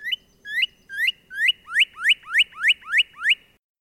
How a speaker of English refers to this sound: That was the cheer, cheer, cheer of a northern cardinal. While males sing year-round, they ramp up their efforts in the spring.